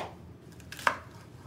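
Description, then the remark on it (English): A knife strikes a cutting board in one sharp, crisp chop, preceded by a softer tap, over a quiet low hum with no talking. “It's like you hear the knife.”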